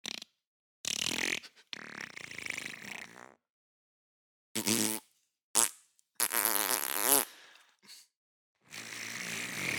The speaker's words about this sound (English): Sensual farts.